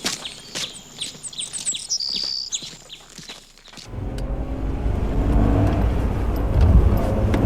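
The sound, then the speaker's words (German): Birds chirp for a few seconds, then a Land Rover's engine suddenly rumbles to life and pulls away, its deep, steady drone growing louder as it drives off. “Mein Land Rover wartet da drüben.”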